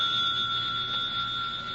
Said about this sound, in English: Your telephone, Chief Inspector. Oh, it's ringing, isn't it?